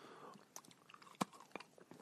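Someone chewing a cookie, with crisp crunching bites in an uneven rhythm, one sharp loud crunch standing out midway, and no talking.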